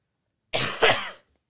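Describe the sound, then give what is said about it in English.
A person with allergies gives a loud double cough in quick succession, harsh and breathy, with silence before and after and no talking. “Hold on, I'm going to cough because I have allergies.”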